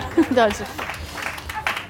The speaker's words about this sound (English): We are friends now. You don't have to clap.